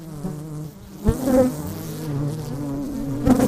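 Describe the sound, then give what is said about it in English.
Bees buzz steadily around yellow and violet-purple flowers planted along the fence of a farm to attract pollinators, a continuous droning hum that swells as individual insects pass by, with a couple of louder fly-bys near the start and end. “yellow and viola-purple type of flowers are planted specifically around the fence of his farm to attract pollinators such as bees, birds and butterflies.”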